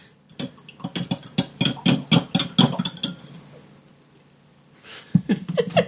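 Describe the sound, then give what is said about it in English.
A spoon clinks rapidly and steadily against a glass while stirring chocolate syrup into milk, about ten bright taps in a quick rhythm, then a pause before a few more clinks and scrapes. “Why do you avert your eyes while I stir up this chocolate milk?”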